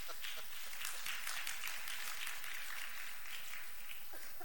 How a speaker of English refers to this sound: So if we could give him a round of applause, that would be awesome.